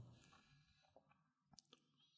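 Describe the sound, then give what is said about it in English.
A quiet sip of gin, followed by a few short wet mouth clicks and smacks near the end, with no talking. “Let me take a sip.”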